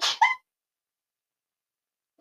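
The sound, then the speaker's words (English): A single small, quick sneeze: a breathy burst that ends in a short, high-pitched voiced squeak, then silence. “I'm gonna sneeze.”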